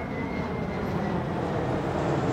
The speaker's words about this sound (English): There's a lot of things going on in the scene, not the least of which, and not the most subtle of which, is the sound of that plane flying overhead.